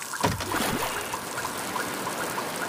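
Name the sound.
flowing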